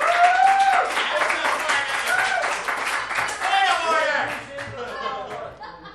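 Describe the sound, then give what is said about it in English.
A crowd bursts into sustained applause, dense clapping mixed with cheers and raised voices, holding steady for several seconds before thinning slightly at the end. “It says, wait for applause here.”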